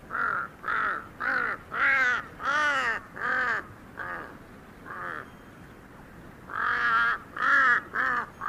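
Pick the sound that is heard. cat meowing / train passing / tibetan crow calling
tibetan crow calling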